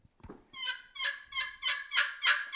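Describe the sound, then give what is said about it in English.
A turkey call makes a quick series of about six sharp, raspy notes that grow louder, imitating an excited hen cutting, alone with no talking. “I'm sorry, the cutting of an excited hen.”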